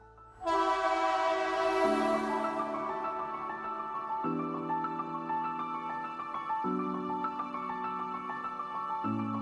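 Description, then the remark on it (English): A train horn blasts loud and sustained, its chord shifting in pitch a few times over a rumbling rail background as the train pulls away. No one speaks. “The train is exiting Principle Station.”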